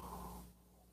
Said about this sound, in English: Fill it with your favorite liquid. I like coffee. And join me now. especially all you women who are in your prime. For the simultaneous sip. It's the dopamine of the day. The thing that makes everything better. It's called the simultaneous sip.